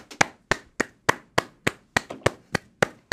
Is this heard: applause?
yes